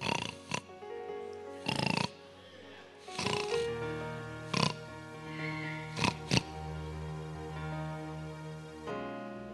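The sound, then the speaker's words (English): A voice imitates loud snoring, as of someone falling asleep in church when the word of God begins, with a series of rough, snorting bursts at irregular intervals, prominent over a steady background hum. “You snore, then you open your mouth.”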